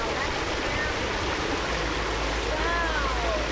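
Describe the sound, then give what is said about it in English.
Water from a mini waterfall in a stream, gushing over a flat stretch of sand and mud, rushes in a steady, continuous wash throughout, with faint thin whistling tones rising over it near the end. “About 500 yards upstream from the first stop, we round a bend to the sound of rushing water. A mini waterfall gushes over a flat stretch of sand and mud.”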